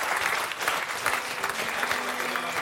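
A room full of people applauds steadily, the dense clatter of many hands clapping at once holding an even, fairly loud level throughout, with no one speaking.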